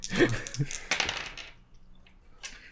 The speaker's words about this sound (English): They roll four dice. Keep the best.